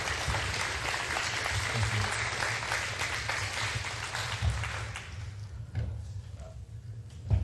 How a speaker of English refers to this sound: Can you guys give Joel and Alice a round of applause here this morning?